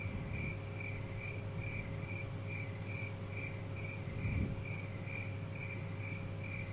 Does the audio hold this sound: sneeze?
no